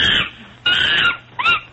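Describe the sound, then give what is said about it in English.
Three shrill, harmonic calls of endangered squirrel monkeys from the zoo in Wellington, New Zealand: a short one, a longer sustained squeal, then a quick rising-and-falling chirp. Each is loud and clear with nothing else behind it. “We do, because we do speak squirrel monkey.”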